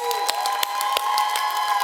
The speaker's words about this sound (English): I need all the fathers, stepdads, dads, granddads. Stand to your feet, father-in-laws. Stand up. Clap it up for the dads.